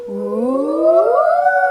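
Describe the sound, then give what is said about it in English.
Several voices imitate a fire engine siren together, a sustained rising 'woo' that glides steadily upward in pitch and holds fairly loud for under two seconds. “When we make that fire engine sound, that's our singing voice.”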